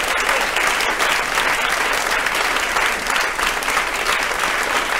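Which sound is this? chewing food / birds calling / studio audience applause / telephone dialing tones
studio audience applause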